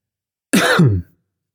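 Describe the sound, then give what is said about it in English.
A single harsh throat-clearing cough, about half a second long, loud and raspy against otherwise silent surroundings. “Fighting a bit of a cough here too, so bear with me through that.”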